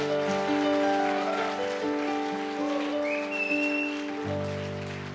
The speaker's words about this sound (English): Give a nice round of applause for the worship team.